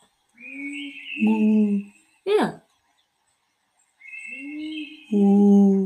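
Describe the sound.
Two drawn-out, hooting owl-like calls, moderately loud, separated by a short gap and a brief burst of sound; the calls are a human voice imitating an owl.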